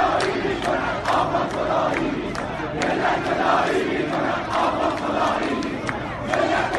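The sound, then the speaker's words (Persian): A large protest crowd in Iran, in protests that spread from Mashhad to Kermanshah, shouts in unison at officials, demanding they abandon Syria and care for the people: voices rising and falling in rhythmic bursts of chanted slogans, loud and dense throughout with no pauses. “همین مردم در اعتراض‌هایی که از مشهد به کرمانشاه کشیده شد، از مسئولان خواستند سوریه را رها کنند، فکری به حال آنها کنند و خطاب به آنها فریاد زدند.”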